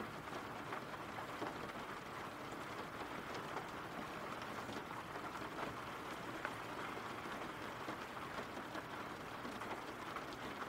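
Steady rain falls continuously in a dense, even hiss of countless drops, holding a constant moderate level from start to finish with no voices and no breaks.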